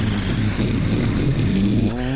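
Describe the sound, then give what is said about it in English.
A loud, steady engine rumble as Dax fires up the engines of the ship Sarissa, with a deep low-end drone and a rising harmonic whine near the end as the engines power up. “Dax fires up the engines.”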